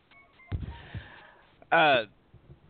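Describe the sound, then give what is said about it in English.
A telephone sounds in the background: short electronic tones at first, then a loud, bright burst of ringing that cuts off abruptly, with faint voices and room noise around it. “I just want to say, loud phone in the background.”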